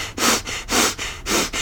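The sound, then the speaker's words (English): Quick, forceful breaths pushed in and out through the nose as a breathing exercise, about three rapid cycles of airy huffs in a steady rhythm with no talking. “You can do short and fast breaths like this.”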